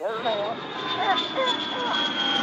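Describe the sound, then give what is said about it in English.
A steady airplane engine drone with a thin high whine holds throughout as the plane flies overhead, fairly loud, while people's voices murmur over the top. “I hear that plane.”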